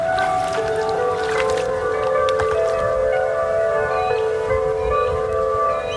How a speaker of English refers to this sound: the Hume Dam at Albury Wodonga, the Yarrawonga Weir. And then all of the weirs and locks further down the system. And you really can hear that sound of increased depth and then shallowing out as the river crosses those structures.